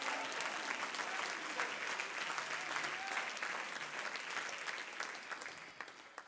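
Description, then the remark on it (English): A church audience claps their hands unto the Lord in a dense, sustained burst of applause, many overlapping claps blending into a steady roar that holds strong before easing slightly at the end. “Oh, somebody clap your hands unto the Lord.”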